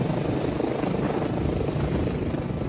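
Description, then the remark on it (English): A military helicopter flies low overhead above protesters in the United States, its loud, steady rotor thrum and engine rumble filling the air without pause. No one speaks. “And that chilling image of the military helicopter flying low to intimidate the protesters.”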